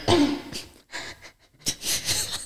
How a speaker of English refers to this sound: Sorry. That's such a dad cough.